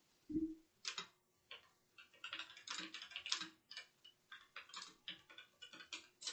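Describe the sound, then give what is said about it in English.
Rapid keyboard typing as someone types in "green platypuses", a steady run of sharp, bright clicks in uneven bursts with brief pauses, fairly quiet with a faint low hum beneath and no one speaking. “So sorry if you're hearing clicking.”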